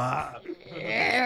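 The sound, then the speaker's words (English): A single drawn-out burp made by someone leaning toward a microphone, loud and gravelly, rumbling for over a second with a brief dip in the middle before swelling again. No talking over it. “I just want to hear you burp, but not quite make it away from the microphone.”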